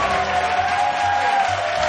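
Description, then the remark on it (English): A burst of canned applause with crowd cheering, a dense, steady wash of many hands clapping at an even loudness for about two seconds, with no one speaking. “I'm going to give you a round of applause and sound effects here.”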